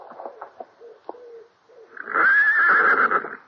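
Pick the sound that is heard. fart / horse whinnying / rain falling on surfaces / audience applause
horse whinnying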